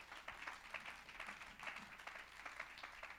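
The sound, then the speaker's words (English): A crowd claps hands together for Jesus during a sermon, a dense, steady patter of many overlapping claps continuing throughout, fairly quiet, with no one speaking over it. “If you believe that, clap your hands to Jesus.”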